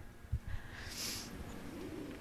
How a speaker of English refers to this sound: Oh, my God, there's a pigeon coming. Oh, my God. Okay, it's flying directly overhead. It goes right. It flies around the coop.